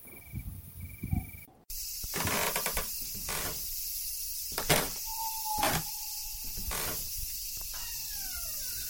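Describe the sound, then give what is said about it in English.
A door creaks open with a few clunks and knocks, a thin squealing tone drawn out midway and more faint creaks near the end, all over a steady hiss. “That door. I hope no one heard it open.”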